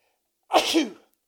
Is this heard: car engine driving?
no